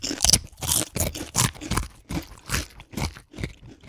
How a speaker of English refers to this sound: All right, here we go. Test number one. Make sure you chew in the mic here. All right, like 1, 2, 3.